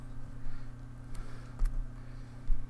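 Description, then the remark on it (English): A few soft, scattered keyboard clicks tap out irregularly over a steady low electrical hum, quiet, with no voices. “He's typing.”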